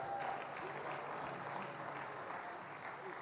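An audience claps steadily in a dense, sustained burst of applause that holds at an even level for a few seconds, with a faint murmur of crowd voices underneath.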